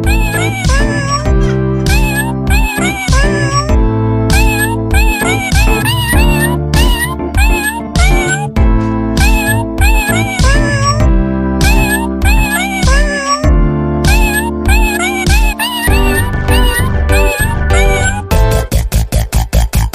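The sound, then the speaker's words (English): A steady stream of loud cat meows, pitched and strung together like a melody, rising and falling over a dense musical backing, with no one talking. “I'm sure those little cats would hinder my chances on the Tinder”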